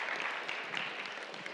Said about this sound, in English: Yeah, you can give God a clap. Praise be to God.